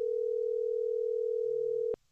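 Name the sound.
telephone call ringing tone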